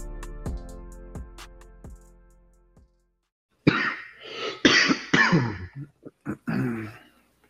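A few fading chime-like notes give way to silence, then a loud coughing fit: several harsh hacking coughs followed by quicker, shorter coughs and throat clearing.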